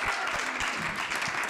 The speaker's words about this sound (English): Yeah, that's an applause.